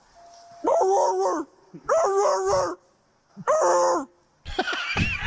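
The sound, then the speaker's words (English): A sheriff's deputy in the woods mimics a police dog, letting out three drawn-out, harmonic bark-howls with pauses between, then a rougher, noisier burst at the end, loud. “he's pretending to be a dog.”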